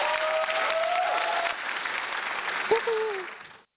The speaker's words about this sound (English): Big round of applause for one of my favorite partners.